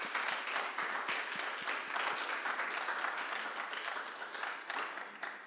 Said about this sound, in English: So let's give a hand clap of appreciation as it comes.